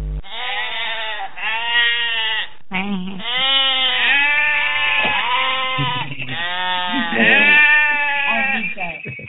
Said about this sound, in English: That is an infectious noise. Every time when we end the show on Fridays, I find myself doing that goat noise just kind of randomly.